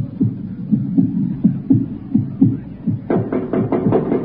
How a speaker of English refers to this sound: But most unbearable of all was the cross pulse. The interminable, monotonous thump thump of the cross pulse.